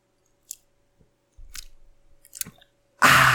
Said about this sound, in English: Here we go. Ready? I'm going to take a sip. Ready?